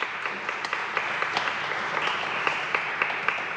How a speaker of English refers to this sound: We get a round of applause for a pair of us.